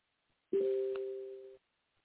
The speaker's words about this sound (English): But anyway, that's your phone, not my phone. I'm still on the air. No, that's my notification for somebody.